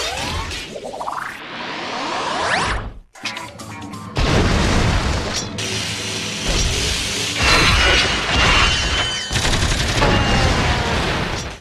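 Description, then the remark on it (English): A rapid barrage of cartoon sound effects: a rising whistle-like sweep, then loud booms, crashes and smashing noises tumbling over one another, dense and close, with no one speaking. “Really close to just a Hanna-Barbera. Yeah. Sound dump.”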